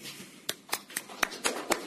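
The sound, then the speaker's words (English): A single person clapping slowly and steadily at a campaign kickoff in Norfolk after Mayor Michael Bloomberg is introduced, about six crisp claps evenly spaced over a couple of seconds, fairly quiet against a faint background hiss, with no voices. “Is that one person clapping?”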